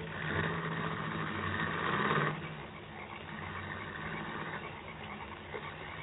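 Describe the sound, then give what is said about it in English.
A car engine idles in the rain with a steady rumble, then the sound drops off after a couple of seconds as the car drives away, leaving a quieter continuous background noise. “When the car had gone, he released me.”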